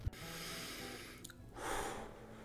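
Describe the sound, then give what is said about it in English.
Heavy breathing as someone catches their breath: a sharp snort-like intake at the start, then a long, broad exhale swelling midway and fading, with no talking. “Just taking a moment to catch my breath.”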